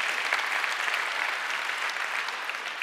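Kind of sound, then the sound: crowd, audience applause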